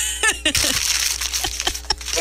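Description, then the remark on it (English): Paper being crumpled aggressively: dense, crackling bursts of crinkling noise with sharp snaps scattered throughout, fairly loud and continuous over a couple of seconds, with no talking. “Just aggressively crumpling that paper.”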